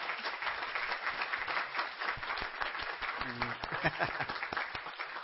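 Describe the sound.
A church audience applauds steadily for a departing staff member, many hands clapping in a dense, continuous patter that stays fairly loud throughout, with a few voices briefly audible among the claps.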